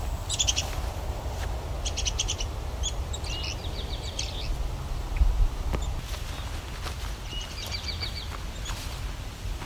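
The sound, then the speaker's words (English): An eastern towhee sings in the background, its short trilled phrases repeating a few times amid other bird chirps over steady outdoor noise, with no talking. “It's an eastern towhee in the backdrop.”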